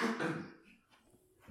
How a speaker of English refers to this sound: Sorry, just coughing off mic.